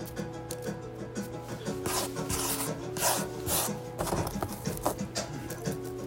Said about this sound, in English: Now, time to put the weed in the paper.